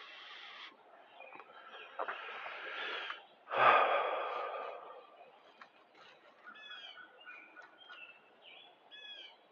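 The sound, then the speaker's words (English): A hen clucking outside in a yard: soft, irregular clucks and short chirpy calls, with a louder breathy squawk partway through and quieter trilling notes near the end. No one speaks. “I'm gonna put this chicken back in the house.”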